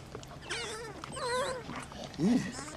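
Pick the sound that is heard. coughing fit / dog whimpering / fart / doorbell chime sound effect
dog whimpering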